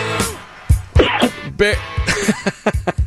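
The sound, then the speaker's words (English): Glenn Kozlowski coughs several times over a phone line into the Hamp and OB Show on 720 WGN radio, in short, harsh, fairly loud bursts with throaty voiced sounds between the coughs. “That cough is Glenn Kozlowski on the phone.”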